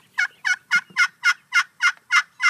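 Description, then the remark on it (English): A quick, steady run of about nine loud, excited turkey hen yelps made on a turkey call, evenly spaced, with an urgent rhythm and no talking. “You know, that's an excited yelp.”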